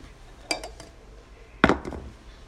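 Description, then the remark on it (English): Three metal cooking pots used as props during a church sermon are set down with clanking, clinking impacts, one around half a second in and a louder cluster near the end, with faint background hum. “We can have three pots.”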